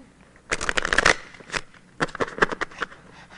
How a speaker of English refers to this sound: And now will you put it back in the deck? So now we'll shuffle the deck.